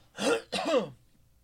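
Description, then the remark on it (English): Someone clears their throat in two quick, rasping bursts, a short guttural pair with a brief gap between them and quiet afterward. “do you have a cough button?”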